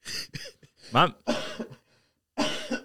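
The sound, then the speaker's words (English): Several harsh coughs come in quick bursts with short pauses between them, mixed with rough throat-clearing sounds, loud and dry. “Bro, I hate, like, this is obviously getting edited out, but I fucking hate that every time, like, someone coughs or someone interrupts me, bro, I come with the same fucking energy.”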